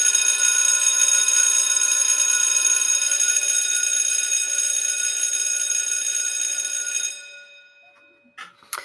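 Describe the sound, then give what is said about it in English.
An electric school bell rings loudly and continuously for about seven seconds with a harsh, metallic buzzing tone, then cuts off abruptly, leaving faint background clatter. “Okay, that's the bell.”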